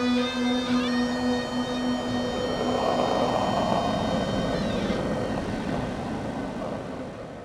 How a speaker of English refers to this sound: So night falls and the moon is full and the tide is low. And just as you're about to fall asleep, you hear the low droning whistle that sounds almost like a flute coming from over the rocks.